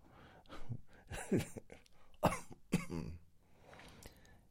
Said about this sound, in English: I think you should edit out the coughing. I don't think it's professional.